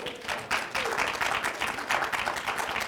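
An audience applauds a volunteer called up to the front, many hands clapping in a dense, even wash of sound that holds roughly level for about three seconds, with no voices on top.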